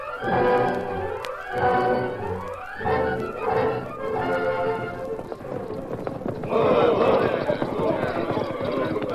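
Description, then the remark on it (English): Horses ridden by a group of men gallop in a steady, rapid drumming of hooves that runs throughout, loud, with rising voice-like calls over the pounding early on. “Your horses are tired, and so are you.”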